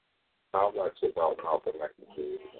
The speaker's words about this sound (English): Yeah, was that just an echo right there? That was an echo, but don't sweat it. We're going to take care of that.